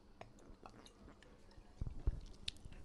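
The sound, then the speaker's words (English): Quiet sipping of a spicy chili drink: soft wet mouth clicks and small slurps, ending in a couple of louder gulps or thumps. No one speaks. “Cheers and a sip.”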